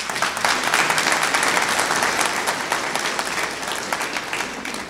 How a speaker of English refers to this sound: I can't clap too loud holding this one, but I was clapping too